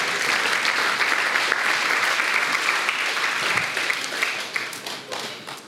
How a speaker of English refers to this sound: Come on, let's give the Lord a clap and a shout. Come on.